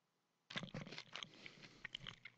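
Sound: chewing food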